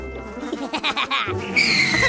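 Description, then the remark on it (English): A horse neighs, a quavering, fluttering whinny that climbs into a shrill, drawn-out squeal near the end, with no one talking. “Ooh, horses!”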